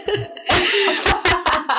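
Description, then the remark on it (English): A loud, breathy sneeze bursts out after a short intake of breath, followed by a few quicker, sharp exhalations, with no talking. “Bless you.”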